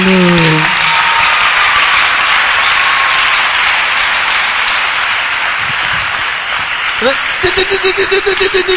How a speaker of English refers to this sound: It's powerful. If it's powerful, clap for Jesus.